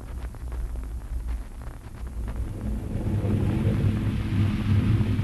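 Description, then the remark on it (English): Deep, continuous low rumbling of thunder from an approaching storm builds and swells louder toward the end, with a faint windy hiss over it and no one talking. “Get out of back here to the barn. Storm's coming.”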